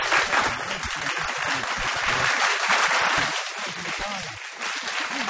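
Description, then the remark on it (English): Canned applause plays as a dense, steady wash of clapping at a constant loudness for about five seconds, with faint crowd voices mixed underneath. “Canned applause if you could, Mr.”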